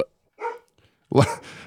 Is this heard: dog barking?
yes